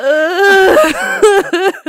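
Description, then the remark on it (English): A voice lets out wavering, high-pitched sobbing whimpers in several broken bursts, loud and strained, with shaky pitch that edges toward laugh-like crying; no clear cough stands out. “you're coughing, crying.”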